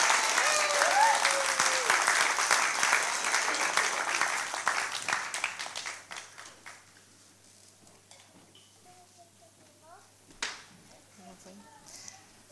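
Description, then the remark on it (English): An audience gives volunteers a round of applause, clapping in dense, steady applause for about six seconds, then it thins out to scattered claps and fades away, with faint voices murmuring underneath and one louder clap near the end. “Shall we give our volunteers a round of applause?”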